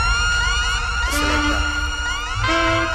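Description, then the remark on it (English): Two sharp explosion-style sound-effect blasts, about a second and a half apart, played during the Island Mix Hour DJ mix, cut through a loud, continuous wash of wailing, siren-like sweeping tones, with a deep rumble underneath and no talking. “So I love how the sound Explosion playing.”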